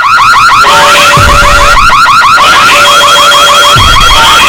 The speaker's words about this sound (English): They were well known for having the very, very annoying entrance music, which I will bring up. That was Steven Richards' one, round about the time where everything was getting censored. Here's the theme music.